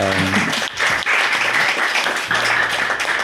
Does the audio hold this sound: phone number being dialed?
no